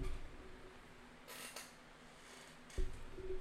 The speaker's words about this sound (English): My bad. My chair kind of slid away from me.